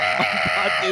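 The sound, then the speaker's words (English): A person bleats like a goat, one loud, wavering, nasal cry held for about a second, filling the whole clip. “I was not expecting you to do a full-on goat sound there.”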